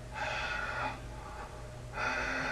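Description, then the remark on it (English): A person imitates steady heavy breathing into a phone: three loud, rasping breaths, a long one, a short fainter one, then another strong one, over a low background hum. “I would have taken just steady breathing into the phone and that ring.”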